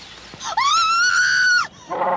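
A single loud, shrill scream of terror, sustained for just over a second at a steady high pitch before breaking off with a downward slide, then a brief softer rasp.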